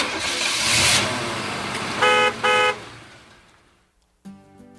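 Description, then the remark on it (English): A car engine rumbles and pulls away, with two short, loud horn honks in quick succession midway, then the sound fades out before a brief tonal sound at the end. “We're about ready to jump in the car and take a tour of the listening area and find out what's going on in an area near you.”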